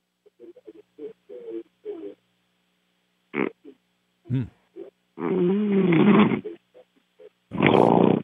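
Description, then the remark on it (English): A radio call-in caller from Minneapolis, Minnesota, snores over a narrow, telephone-quality line: a run of short snorts and grunts, then two long, loud rasping snores separated by a brief pause. No one speaks. “Is he snoring? We got a snore tonight.”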